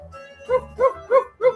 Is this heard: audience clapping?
no